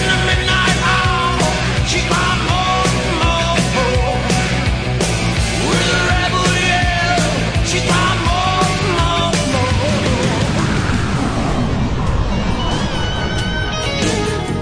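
A loud, driving 1980s-style rock song plays continuously, with pounding drums, dense electric guitars and a strained, shouting vocal, holding a steady full volume throughout.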